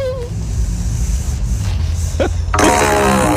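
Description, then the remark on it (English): A woman's long, low, rumbling fart blown through a PVC pipe pointed right at a microphone, buzzing and sputtering for several seconds before ending in a harsher, crackling burst. “Instead of just farting, she's”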